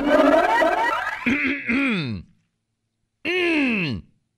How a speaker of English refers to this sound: This is me clearing my throat. I'm getting ready for something big.